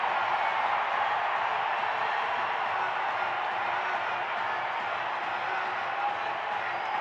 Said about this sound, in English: The crowd's fired up